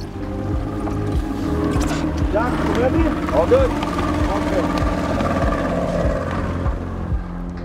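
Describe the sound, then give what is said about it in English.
A small skiff's outboard engine drones steadily throughout, a loud low rumble with the hiss of water, as it carries people out to sea with its lights and radar turned off, while people talk briefly over the noise. “We were picked up by skiffs.”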